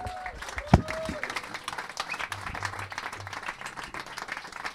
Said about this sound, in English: Can we have a last round of applause, please, for John Hastings?